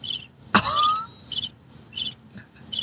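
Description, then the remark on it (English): A cricket sound effect played from a button: chirps repeat in short, evenly spaced high-pitched bursts, steady, with a sudden sharp ringing hit near the start. No one speaks. “With your cricket button.”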